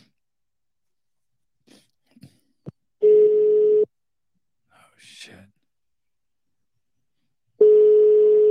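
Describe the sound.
A phone's outgoing ringing tone sounds twice, each a loud, steady electronic hum lasting about a second, spaced several seconds apart, with a brief exclamation and some quiet rustling between them.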